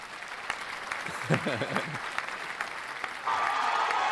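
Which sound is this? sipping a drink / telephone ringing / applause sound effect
applause sound effect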